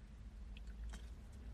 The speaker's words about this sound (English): Okay, I'm thinking I'm going to get that word out right. Let me sip my coffee again.